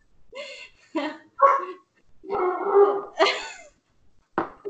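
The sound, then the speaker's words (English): Two pet dogs, Titus and Ajax, bark loudly at each other in a series of sharp, uneven bursts, with one drawn-out, howling bark in the middle and a final short yap after a brief pause. “Our dogs are going nuts because of each other.”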